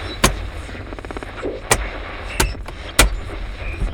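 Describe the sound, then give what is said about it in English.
An old car engine struggling over a low, rough rumble, punctuated by four sharp, loud backfire-like pops spaced unevenly across a few seconds. No one speaks. “Piece of shit car.”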